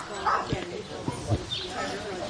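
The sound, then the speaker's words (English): A few sharp dog barks ring out amid a busy outdoor crowd at the Deepwater Literary Festival's Blessing of the Animals, where local community members brought pets including cats, dogs and goats. People chatter in the background and other animal sounds are mixed in. “Members of the local community arrived with their assorted pet animals that included cats, dogs, and goats.”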